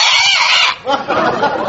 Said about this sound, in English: You try and keep that parrot quiet, Miss Godfrey.